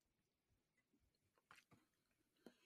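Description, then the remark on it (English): Quiet chewing of Icebreakers Ice Cubes gum, Arctic Grape flavor, with a few wet smacks and sharp clicks at irregular intervals, a couple standing out louder near the end, and no talking. “And the gum I'm chewing is these Icebreakers ice cubes, and it's called Arctic Grape, but it's basically just, it should be basically adult big league chew.”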